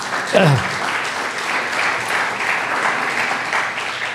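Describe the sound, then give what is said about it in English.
An audience claps steadily for Jesus, dense applause lasting several seconds, with a brief voice cheering at the start. “Come on, give Jesus a clap of me.”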